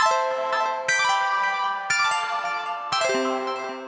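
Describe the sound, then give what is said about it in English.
A bright, ringing chime, played to mark a start, sounds four times at an even, roughly one-second pace, each strike rich in overtones and left to shimmer and decay, clear with no voices. “And before I start talking about the Zircon Affair, I suppose I should play a little chime so that everybody knows the episode started properly.”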